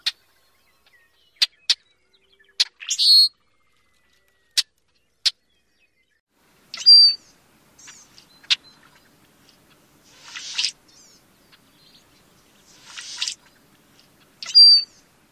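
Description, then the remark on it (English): A Brewer's blackbird's harsh, non-musical rushing, gurgling song repeats several times between sharp clicking notes, fairly loud, with no talking and little else in the background. “The second song is a non-musical rushing gurgle.”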